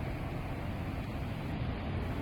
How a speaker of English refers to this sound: As it's our Kyoto special, we'll be staying in the city. First, we are next to the river Kamo, hearing some cars, faint birds, and the flow of water.